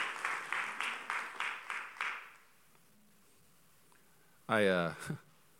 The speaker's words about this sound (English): I'll take a clap.